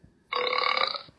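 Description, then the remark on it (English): A single loud, drawn-out burp bursts in abruptly and rumbles steadily for nearly a second before cutting off, clear with no one talking over it. “I freaking hate burps.”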